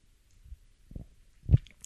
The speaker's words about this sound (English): Having like a wine standoff right now. We're both holding the glass. We both really want to take a sip. Three, two, one, go.